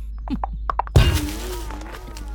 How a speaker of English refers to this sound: Did you headbutt the door?